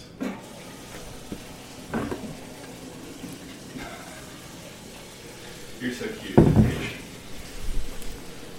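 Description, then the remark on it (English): A dog named Thunder laps water from his bowl: quick, wet, splashy slurps in an uneven rhythm, mostly soft, with a couple of louder bursts toward the end over a low background hiss. “They'll be like, oh, it's so cute, there's a dog lapping up water in the background.”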